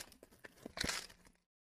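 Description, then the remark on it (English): Paper being crinkled up: a quick burst of dry crackling and rustling that builds to a louder crunch, then stops abruptly after about a second and a half. “She crinkled up the paper.”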